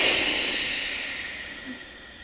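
A forceful breath pushed through the nose during Bhastrika (bellows) breathing practice, with the belly squeezed, a loud airy rush that starts strong and gradually fades over about two seconds, with no talking.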